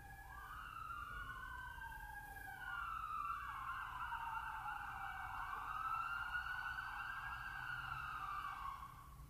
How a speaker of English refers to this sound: So tonight, in this messy world, as we hear the sirens going on around us, interesting. Let's just let them go by.